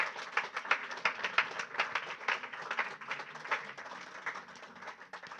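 A crowd of people applauding steadily, giving a clap to Jesus to recognize the ministry of a visiting pastor from Rwanda, many overlapping claps forming a dense, continuous patter that swells and dips slightly over about five seconds, with no voices standing out.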